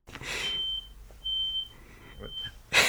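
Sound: smoke detector alarm beeping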